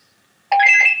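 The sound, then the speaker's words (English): A mobile phone ringtone suddenly starts up after a moment of silence, a loud electronic melody of bright warbling tones that keeps playing to the end. “Oh my god! That's my ringtone. Oh, chuck me the phone.”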